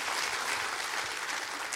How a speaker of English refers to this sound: Come on, clap your hands real big and say, I amen that, Pastor. I amen that.